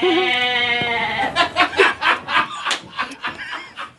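A goat lets out a long, quavering bleat, then breaks into a rapid string of short, stuttering bursts, loud and unaccompanied by talk.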